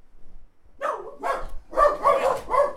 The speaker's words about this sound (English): Fucking goddamn dogs. Crazy motherfuckers. You never know what they're going to start barking about.